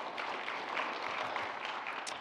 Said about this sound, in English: Let's give applause for our Lord Jesus.